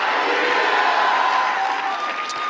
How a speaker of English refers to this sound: Somebody shout a good Tennessee hallelujah. Hallelujah.